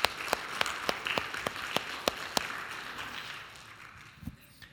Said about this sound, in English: We had 17 accept Christ during vacation Bible school and some others that made decisions of rededication. Yeah, we'll give applause to that.